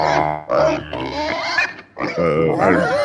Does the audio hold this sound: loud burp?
no